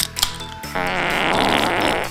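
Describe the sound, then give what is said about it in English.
A loud, sputtering fart sound effect from a can, with a brief tonal lead-in, then a sustained buzzy, rippling blast lasting over a second, alone with no talking. “Hey, barkeep, pass me an ice cold Pop Fart, would you?”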